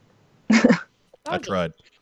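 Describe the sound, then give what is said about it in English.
A person imitates a dog barking with two short, hoarse vocal bursts, the second slightly longer, with a brief pause between them. “And it's got a dog on it, so who wouldn't be excited for that? Woo! Doggy.”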